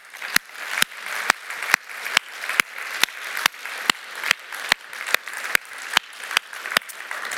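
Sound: audience applauding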